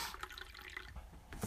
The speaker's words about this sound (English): The beer is pouring nice, by the way. We're getting smarter as we go here. We're most of the way through our 84-ounce black and tan. Yeah, it's disappearing quick.